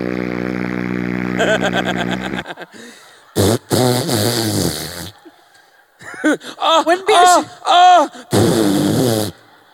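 fart sound effect

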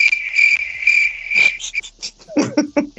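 cricket chirping sound effect

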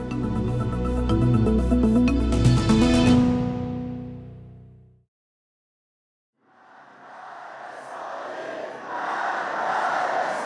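crowd chanting

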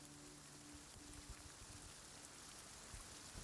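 rain falling

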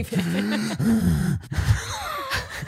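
heavy breathing

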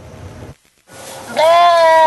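sheep bleating

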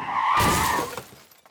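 car crash

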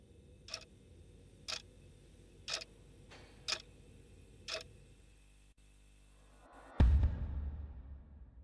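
clock ticking

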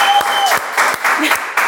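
applause

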